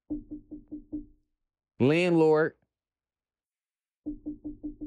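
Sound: knocking on a door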